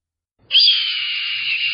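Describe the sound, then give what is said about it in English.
A hawk lets out a single loud, harsh scream that starts abruptly and holds steady for over a second, piercing, with no other sounds around it. “I screamed. 20 feet from the ground, I opened my wings.”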